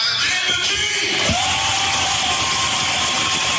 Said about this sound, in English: Are they applauding? Yes.